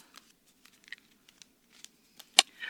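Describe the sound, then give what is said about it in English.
Cards from a small deck of spell cards being shuffled and one drawn: quiet papery flicks and ticks in an irregular patter, then one sharp snap followed by a short sliding rustle. No one speaks. “So I'm going to shuffle and pull a spell for us to start our 2024 off.”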